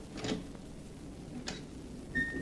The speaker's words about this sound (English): Was this his room? Yes. Now, be very quiet while I open the door.